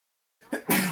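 A single sneeze bursts out after a moment of silence, starting with a short breathy intake and ending in a loud, sharp explosive blast.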